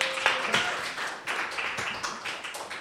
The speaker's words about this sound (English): I was going to do like a comic pratfall as like the end of Anna Karenina, which rose up under a train, but you've missed that now by clapping too early, so well done.